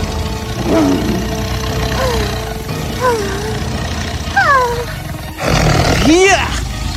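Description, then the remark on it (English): A tiger in the woods roars and snarls repeatedly as it corners a girl and approaches her, a series of drawn-out growling calls over a steady rumbling background, the final roar loudest. “When he reached there, he saw that the tiger had cornered Pastorella and was approaching towards her.”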